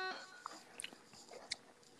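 Someone chewing ice, with a series of irregular, sharp crunches and crackles spread over about two seconds. The sounds are fairly quiet and there is no talking.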